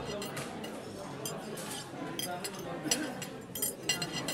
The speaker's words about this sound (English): Other times, he'd listen to the clanking of dishes.